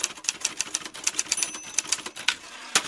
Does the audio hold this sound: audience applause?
no